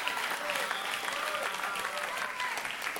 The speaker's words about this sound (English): Okay, your clapping says I should stop. I think I'm teaching too much.